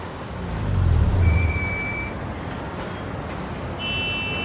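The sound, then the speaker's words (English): Steady low rumble of idling cars and trucks in traffic, swelling briefly, with a short high-pitched horn-like tone in the middle and another thin whine near the end; no one speaks. “Oh no, traffic jam.”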